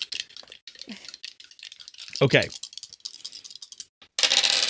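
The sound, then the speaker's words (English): Three dice rattle and clatter in quick, dense clicks for several seconds as they are rolled, then a louder burst of tumbling near the end; a voice briefly speaks in the middle. “I'm going 3 dice on this.”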